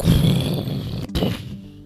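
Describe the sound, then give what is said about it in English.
The stone door of the Cave of Wonders grinds and rumbles shut with a deep, rough scraping, breaking briefly before a final cracking thud that trails off. Loud, low and gritty, with no voices. “All at once, the stone door slammed shut behind them with a grinding, cracking noise.”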